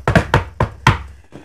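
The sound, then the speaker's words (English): Four sharp, hollow knocks on wood in a quick, even rhythm, followed by a couple of much fainter taps, with no talking. “Knock on wood.”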